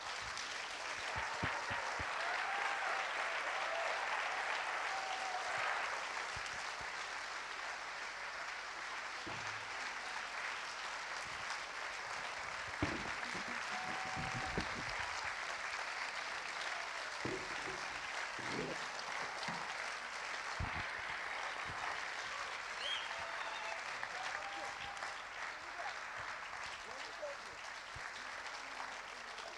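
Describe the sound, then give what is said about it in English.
An audience at a church service claps steadily and at length for the moms as they walk onto the stage with their kids, a dense, even wash of many hands that holds at the same level for the full half minute without fading. “So would you guys do me a favor and go ahead and have a nice, long, welcoming transition clap for the moms as they make their way to the stage.”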